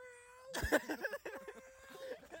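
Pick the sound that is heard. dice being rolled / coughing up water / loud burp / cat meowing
cat meowing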